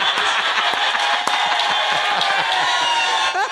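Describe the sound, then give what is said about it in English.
A big crowd roars and cheers in a steady, loud wall of noise for a few seconds, with scattered sharp claps and shouts breaking through. “And the crowd goes wild.”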